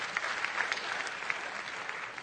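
An audience claps steadily, many hands producing a dense, crackling wash of applause with scattered sharper claps standing out; no voices are heard.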